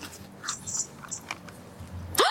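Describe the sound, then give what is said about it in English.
Someone chewing Skittles candy, with irregular crunchy, moist bites and smacking at a moderate level, ending in a brief louder scrape; no one speaks. “Can I get some Skittles?”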